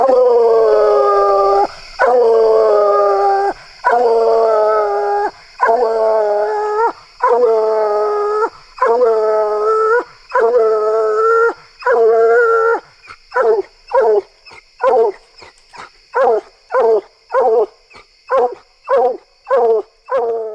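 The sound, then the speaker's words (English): A hound dog bays loudly while treeing and opening, first in long drawn-out bawls, then quickening into rapid, choppy barks. A steady insect-like drone hums in the background, and no one speaks. “I'll share a little audio clip of that dog treeing and opening a little bit so you can kind of get a feel for what that dog sounds like.”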